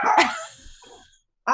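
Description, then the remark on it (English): A chihuahua lets out a sharp, high-pitched bark that trails off into a fading yap, then a second bark starts abruptly at the very end. Fairly loud, with no talking. “He's a wild little chihuahua.”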